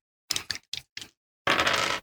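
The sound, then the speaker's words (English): Dice clatter on a hard tabletop during a tabletop game roll that comes up 13: four quick, sharp clicks in a loose rhythm, then a brief pause and a longer, dense rattle as they tumble and settle, fairly loud. “Good roll. Yeah, that is a 13.”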